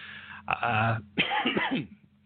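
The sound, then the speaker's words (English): Two short, harsh bursts, like a sudden cough followed by a throat-clearing rasp, with a low steady hum underneath and no talking. “that was an unexpected cough.”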